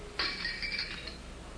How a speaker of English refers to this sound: a little bit of breaking glass there.